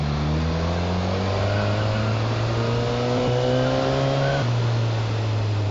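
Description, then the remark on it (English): A motorcycle engine pulls hard as the rider gives it a little throttle while weaving through traffic, its droning pitch climbing steadily, then dipping briefly as it shifts gear and climbs again, with rushing wind noise underneath and no talking. “I'm just going to pull the throttle a slight bit now as I weave through the traffic, but just a tiny amount.”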